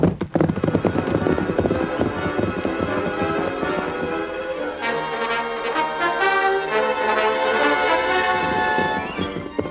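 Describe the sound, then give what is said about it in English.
Rapid galloping hoofbeats of the Lone Ranger's great horse Silver pound loud for a few seconds, then a swelling orchestral music passage takes over and plays on to the end, with no talking. “The Lone Ranger urged his great horse on and on.”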